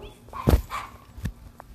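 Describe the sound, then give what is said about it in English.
A few sharp dog barks and yips come in quick, uneven bursts, one deeper and louder than the rest, as a little Yorkie fights a German Shepherd, with no one talking. “A little Yorkie! Beat the crap out of this German Shepherd.”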